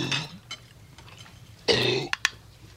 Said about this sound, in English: Oh, he's just yakking on a bone. He got it up. He's all right now. Maybe if you wouldn't feed him from the table.